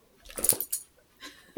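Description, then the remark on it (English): Metal dog tags jangle and flap in a quick, rattling burst as a dog shakes its ears, then a softer rustle and a short, sharper sound at the end. “The flopping of the dog tags in the ears.”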